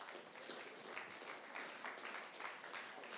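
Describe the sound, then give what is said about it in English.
A crowd gives a round of applause for the moms, many hands clapping in a dense, continuous wash of sound that stays fairly even and moderately loud throughout, with no voices standing out. “Yeah, let's give our moms a round of applause.”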